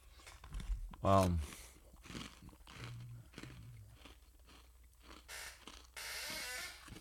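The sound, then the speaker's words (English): Crunchy chewing of a spoonful of granola, with repeated brittle crunches and soft mouth noises, a brief louder burst near the start and a steady crackly stretch at the end. “I should really have background music for what I'm chewing.”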